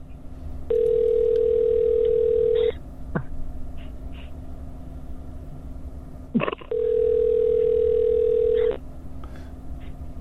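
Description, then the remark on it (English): A phone call to a truck stop ringing with no answer: two long, steady buzzing ring tones about two seconds each, separated by a pause, over a low line hum with a faint click between them. “How come they're answering? They're not answering.”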